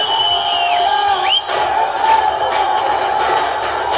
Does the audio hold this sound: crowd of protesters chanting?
yes